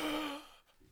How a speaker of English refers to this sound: Gasp.